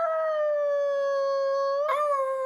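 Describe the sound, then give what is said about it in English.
A person imitates a wolf, letting out a long, loud howl, one steady sustained note with a brief wavering break near the end. “Church of Awoo!”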